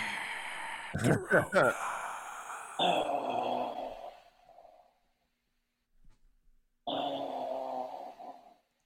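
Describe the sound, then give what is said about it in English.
A person mimics a dying gasp: a sharp, strangled vocal catch, then two long, raspy, drawn-out exhales separated by a short silence, fairly loud. “Death gasp.”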